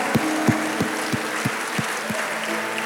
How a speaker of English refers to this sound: I see your hand up there, my sister. Can we clap and celebrate her?